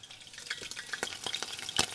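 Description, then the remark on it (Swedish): Chicken sizzles steadily in a frying pan, with frequent sharp spatters and pops crackling over the hiss as the water in the chicken spatters, moderately loud, no voices. “Det är det här med att det är vatten liksom i kyckling. Ja. Så att det sprätter liksom lite.”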